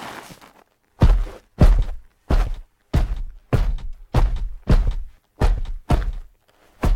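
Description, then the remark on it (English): Heavy, booming footsteps of a Spartan thud in a steady walking rhythm, about a dozen deep impacts with a weighty low-end punch, loud with no voices; built by layering sounds in a sampler triggered from MIDI clips. “And then you can layer whatever you want in to give you that big, heavy, thunderous footstep of the Spartan.”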